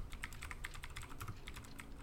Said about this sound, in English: I felt like you were typing in something relating to whistling. I'm looking up how to whistle properly now. I was just typing something.